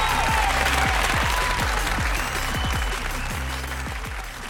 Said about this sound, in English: Cue the fake applause